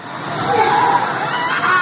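Panicked screaming and shouting from several people rise over a dense, chaotic crowd hubbub at the site of a helicopter crash outside an apartment building in a Kyiv suburb, Ukraine, loud and continuous throughout, with distressed voices overlapping.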